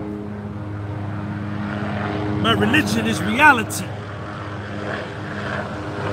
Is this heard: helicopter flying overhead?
yes